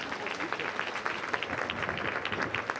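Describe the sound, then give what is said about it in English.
An audience breaks into steady applause for the next speaker, Jeanne Celestine Lakin, a dense wash of many hands clapping at a fairly even level for a few seconds with no voices standing out. “Can we please give our next speaker, Jeanne Celestine Lakin, a round of applause?”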